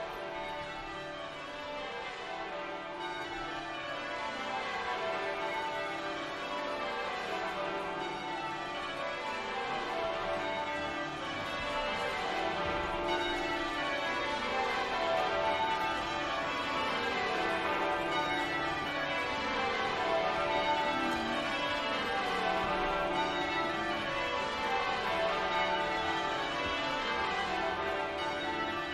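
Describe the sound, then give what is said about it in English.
A full peal of the Westminster Abbey church bells rings continuously for the coronation of King Charles, many bells tumbling over one another in overlapping rounds, loud and resonant with no voices. “So with the Abbey bells sounding the news of his coronation throughout the United Kingdom and beyond, Charles's journey as crowned sovereign is about to begin.”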